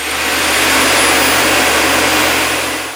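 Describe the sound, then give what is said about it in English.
A vacuum cleaner roars loudly and steadily in a living room, a dense airy whine that begins winding down right at the very end as it's switched off. No voices. “Upon noticing Pearson and Penelope with a plate of cookies, Mama Peters switched off the vacuum cleaner.”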